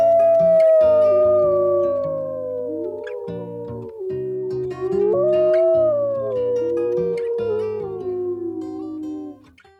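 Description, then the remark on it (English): Red wolves howl in long, wavering tones that slide slowly up and down in pitch, several voices overlapping for about ten seconds, loud and steady with no one talking. “So by putting the red wolf back on the landscape, it helped the sea turtles.”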